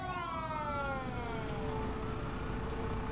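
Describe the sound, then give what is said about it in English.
A full-size fire truck's siren wails steadily, its tone sliding downward as the truck pulls in with paramedics to a burnt-mattress fire in an apartment, with a loud engine rumble underneath and no one speaking. “Whoa, that's like a full-size fire truck. And there's paramedics, too.”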